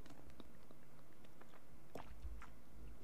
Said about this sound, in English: I'm sitting right now and playing with my drinking straw. Sorry, let me sip a little bit of my shake.